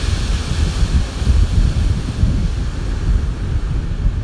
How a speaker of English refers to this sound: I'm sitting here on the beach, on the ocean, with my sun on my face. We're having a heat wave in LA.